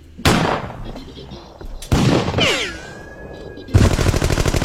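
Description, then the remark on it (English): Three loud, sharp celebratory gunshots fired up into the air ring out in quick succession, each with a long, noisy decay, and a thin, whining tone trails off after the second shot before the final blast. “I'm saying fired at most of the celebratory gunfire is up in the air.”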